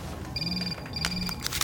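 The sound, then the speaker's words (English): A phone rings in a closet with two short electronic trills in quick succession, each a steady high-pitched tone lasting under half a second, sounding alone without any talking. “I didn't think you'd be able to get phone service down here in this closet. Excuse me, it might be an emergency.”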